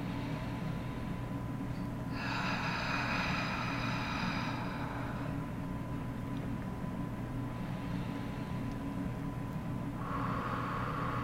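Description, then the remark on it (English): Deep, slow lower belly breathing, the abdomen going out and in, with one long airy breath and then another starting near the end, over a steady low hum with no talking. “Let's do some breathing where your abdomen is actually going out and in versus an upper chest breathing.”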